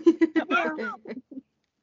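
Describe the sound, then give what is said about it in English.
A person's voice imitates a cat's meow as a call to Dookie, with a few short clipped syllables, one drawn-out rising and falling meow in the middle, then a couple of brief trailing sounds. “Doing our calls to Dookie now.”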